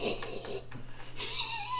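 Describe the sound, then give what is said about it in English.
A voice imitates the wheezing laugh of Muttley, the cartoon dog from Wacky Races: a run of breathy, raspy snickers with hissing exhales, steady in loudness over a little under two seconds. “I can't do the fucking dog laugh from the Wacky Races.”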